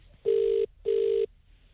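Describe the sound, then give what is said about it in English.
Two steady electronic ringback tones of a phone call ringing out, each about 0.4 seconds long with a short gap between, loud and clear with no talking. “If he doesn't answer this time, I think that we should put producer Dan in a car and he drives down there and gives him the phone.”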